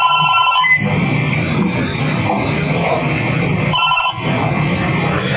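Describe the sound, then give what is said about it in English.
A VoIP phone rings in repeated electronic bursts, a few seconds apart, over a steady, noisy background hiss; it keeps ringing because the connection is never closed. Fairly loud, with no one speaking. “of course, you can notice it keeps ringing because I don't actually close the connection.”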